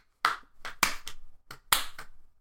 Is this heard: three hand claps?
yes